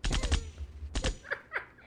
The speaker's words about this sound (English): Gunshots. You gotta put gunshots on that.